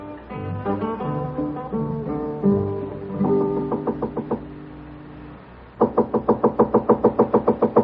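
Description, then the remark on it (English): After a stretch of orchestral music, a quick run of about ten sharp, evenly spaced, loud knocks on a hotel room door at the Carlton Hotel in San Francisco. “Come in, hey boy. The door's unlocked.”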